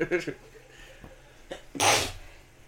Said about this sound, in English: I sneezed.